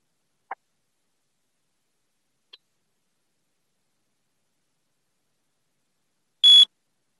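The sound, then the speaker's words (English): A timer's electronic warning sounds: two faint short blips, then a loud, sharp, steady beep tone lasting a fraction of a second, with silence in between and no voices. “why don't you go ahead and run the timer?”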